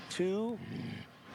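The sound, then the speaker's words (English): A dog gives a short, fairly loud growl, a rough tonal grumble that trails off into a lower rumble over about a second. “Why'd he growl?”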